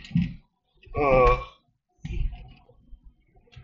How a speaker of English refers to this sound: Again, fucking yawning.